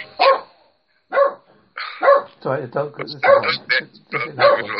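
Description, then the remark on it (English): A dog barks in short, repeated bursts with whiny, whimpering yelps mixed in, loud, with a few brief pauses between outbursts. “Sorry, the dog.”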